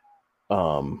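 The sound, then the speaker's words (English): A house cat, going wild, lets out one loud, drawn-out meow very close by, after a brief faint chirp-like tone and a short silence. “As my cat's going nuts right beside me.”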